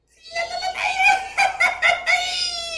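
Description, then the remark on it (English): A single voice lets out a high-pitched Mexican grito yell, rising into a loud sustained cry broken by warbling, laugh-like bursts before trailing off in a long held note. “So my thing was, I said my name, where I'm from, and I did the Mexican yell because I knew how to do it.”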